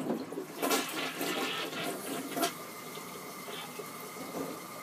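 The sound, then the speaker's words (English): A toilet is flushed to add more water to the bowl, with a rushing, gurgling swirl of water that churns steadily for several seconds, no voices over it. “Listener, he's flushing it.”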